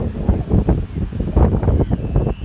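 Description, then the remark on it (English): Steady outdoor wind buffets the microphone with low rumbling gusts at the beach at Fort Fisher in September, while the wash of ocean water rolls underneath in a continuous, fairly loud roar; recorded on a Galaxy S20 Plus phone. “You can hear the wind and the water.”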